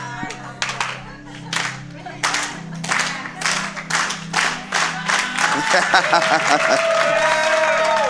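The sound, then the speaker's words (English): A crowd's slow clap, given in thanks for leading a stewardship series: loud, evenly spaced claps that gradually quicken and swell into full applause, with cheers and whoops rising at the end over a steady low hum. “I've always wanted a slow clap, like in the movies, you know, for somebody just...”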